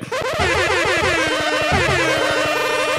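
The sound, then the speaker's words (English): A loud, continuous burst of warbling, sweeping electronic tones, like an air horn effect that comes out sounding like a barrage of laser guns, dense and chaotic with no talking. “Oh, that sounds like laser guns or something. Yeah, it's just supposed to be an air horn.”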